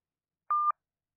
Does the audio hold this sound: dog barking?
no